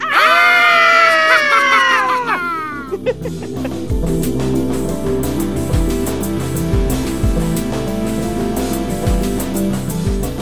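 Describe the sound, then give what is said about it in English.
Several voices let out loud, high, wavering Halloween screams together in a mock-spooky burst lasting about two seconds, trailing off into laughter-like yelps before music starts up and carries on. “And to introduce Scream Time, I think we should all give our best Halloween scream.”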